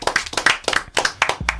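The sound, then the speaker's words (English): A short burst of hand clapping, quick sharp claps in a fairly steady rhythm, loud and without talk, like a small round of applause. “So clap it up for that one time, man.”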